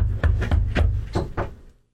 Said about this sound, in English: And there's not even like real wood in here. It's all fake wood. Like, I can't even knock on anything. This door's...